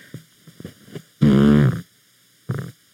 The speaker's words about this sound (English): Oh, my dog wants to smell the fart mic. How's it smell? Very good.